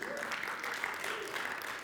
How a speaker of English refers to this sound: Yeah, you can give California a good round of applause.